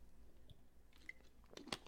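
Someone gulps and slurps a drink into the microphone: quiet, wet mouth clicks and smacks, then a sharper, louder swallow near the end. No one speaks.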